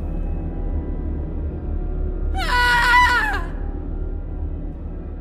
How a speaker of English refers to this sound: Let us first be introduced to the lady. She will speak after she screams.